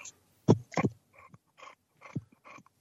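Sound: dog panting heavily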